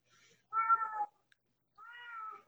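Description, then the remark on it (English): A cat in the background meows twice, a louder half-second meow followed after a short pause by a slightly softer, drawn-out one. A faint brief sound comes just before, with no talking. “People always have cats in the background.”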